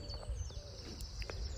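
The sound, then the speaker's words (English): Hens clucking softly: a few short, scattered calls and chirps over a steady low background hum, with no talking. “Hens are funny creatures. I'm just sat here now.”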